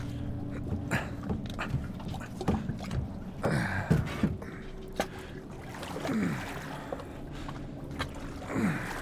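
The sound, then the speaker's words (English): Water splashes and sloshes in slow, irregular strokes as a small boat is paddled by hand over the bow across still, black water toward the far shore, with the hull creaking and knocking faintly over a quiet background. “If you lean over the bow of the boat, you should be able to reach the water.”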